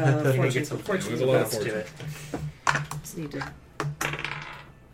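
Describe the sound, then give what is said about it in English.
Dice clatter across a sheet of paper in a few quick, sharp rattles and taps as a player makes a roll for a skill check in a game, while people talk over and around them. “I need to stop rolling on this paper.”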